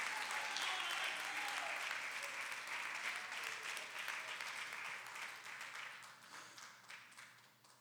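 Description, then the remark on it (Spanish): A church audience applauds together for the Lord in sustained, dense clapping that stays strong for several seconds, then gradually thins and fades toward the end. “Dele un fuerte aplauso, hermano, al Señor con el corazón.”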